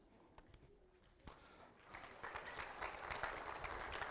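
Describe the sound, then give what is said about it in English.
A few scattered claps build after a couple of seconds into a round of applause from a small group for a child lighting a candle, fairly quiet and steady to the end, with no voices over it. “I bet you're the only kid in the whole place that'll get a round of applause for doing that.”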